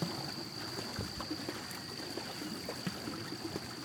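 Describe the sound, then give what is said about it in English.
Steady water sloshing and trickling around a small boat as it moves along a river in the early morning, with a continuous hiss and a faint high whine from a motor. “As we venture further into the river, the quiet stillness of the early morning had quickly transformed to bustling noise coming from all directions.”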